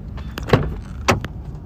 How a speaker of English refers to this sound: I'm going to get out of my truck right now and walk around.